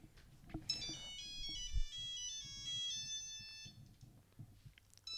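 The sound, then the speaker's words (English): A bright, chirping phone ringtone plays a quick melodic run of high electronic tones for a few seconds, fairly loud, with a low muffled rumble underneath and no talking. “I don't recognize this sound, considering that I'm pretty certain ringtones like this didn't exist at this time.”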